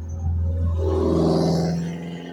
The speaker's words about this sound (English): It's just, you know, this loud-ass fucking lawnmower.